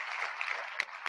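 crowd, round of applause

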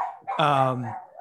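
animal, dog howling and barking

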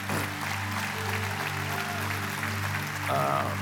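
crowd, audience applause

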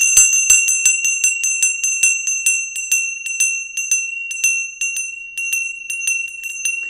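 signal or alarm, bell being rung

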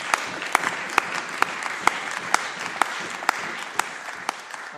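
crowd, applause

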